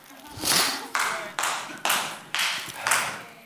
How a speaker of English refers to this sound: This is a mighty hand clap. I like that. I like that.